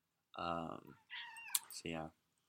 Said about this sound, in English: My cat's making an appearance.